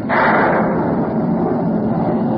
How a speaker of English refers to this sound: Dark, dreary clouds. Followed by loud bursts of thunder. Listen.